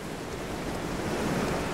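Steady rushing surf from ocean waves breaking on a beach, a dense wash of noise that swells slightly louder toward the end, with no voices.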